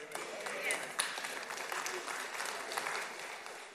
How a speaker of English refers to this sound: That was such a polite applause for God. A great God, a mighty God. If you were in Knoxville watching Tennessee play, you wouldn't have done that.